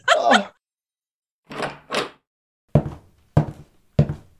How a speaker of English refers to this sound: What'd you kick in the door for?